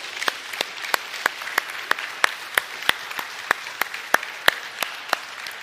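A group applauds steadily one morning in honor of visiting guests, with a dense wash of many hands and sharper individual claps standing out at a quick, fairly regular pace, moderately loud and with no talking.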